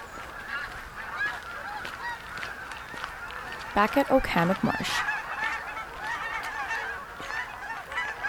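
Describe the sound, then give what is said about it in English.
A flock of geese honks steadily at a marsh, with a burst of loud honks near the middle, while a person speaks briefly over the calls. “why this goose reintroduction was so successful.”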